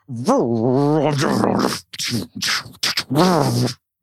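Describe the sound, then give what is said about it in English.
Someone vocally imitates a lightsaber hum: a fairly loud buzzing drone that wavers and slides in pitch, broken up by several short, breathy swooshing bursts. “That's my lightsaber sound. …, do the lightsaber sound again.”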